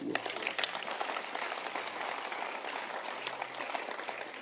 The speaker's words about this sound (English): Can you clap your hands?